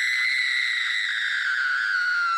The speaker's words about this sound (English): a blood-curdling scream echoes from the outside near the beach.